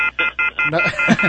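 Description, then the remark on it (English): Four quick electronic phone-dialing beeps in an even rhythm, fairly loud, as two callers in Dover are brought up on the phone line, followed by a voice that starts talking over a continuing tone. “Let's see if we can bring them up on the phones.”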